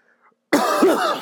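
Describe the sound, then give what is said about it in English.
A loud cough bursts out after a moment of near silence, followed by a harsh second cough and rough throat clearing, with no talking; a person coughing at a microphone they tried to mute. “I'm gonna try to mute my microphone and cough here for a second.”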